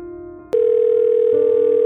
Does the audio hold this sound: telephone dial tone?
yes